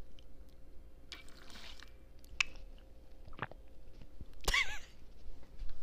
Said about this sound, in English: Wait, let me drink some water. I'll give a little ASMR.